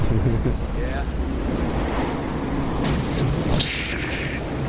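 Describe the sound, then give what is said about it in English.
Steady roar of heavy ocean surf during a 50-year storm, mixed with gusting wind buffeting the microphone, a dense continuous wash of noise with a brief brighter surge near the end. “I knew you wouldn't miss a 50-year storm”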